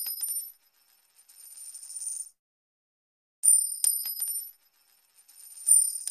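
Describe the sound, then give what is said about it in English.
A sound effect of coins clinking and jingling as they drop, two bursts of bright metallic chimes separated by a short silence, with sharp ringing tones and scattered clinks. “Go on here and drop them coins.”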